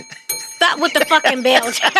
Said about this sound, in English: Stop with the fucking bell